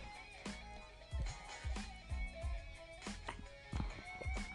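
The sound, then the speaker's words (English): Someone drinking the water from a bong: a steady run of about eight wet gulps and swallows, each with a low thump, spaced roughly half a second apart, with no talking. “Listen to this. I'm going to drink the bong water.”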